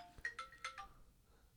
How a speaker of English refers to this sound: Yeah. And so I know, like I said, my phone will go off. You're like, no one's gonna call you this early in the morning. Right. And here we are.